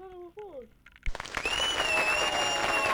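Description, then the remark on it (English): A short voiced sound opens, then a sudden burst of loud, dense applause takes over and holds steady to the end, with a thin high whistling tone running through the crowd noise. “Round of applause.”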